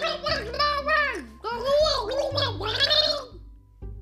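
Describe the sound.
A voice gargles water in long warbling bursts to imitate a mermaid, at a pirate museum, wavering in pitch like bubbly singing, with a brief pause between each of three main stretches before fading out.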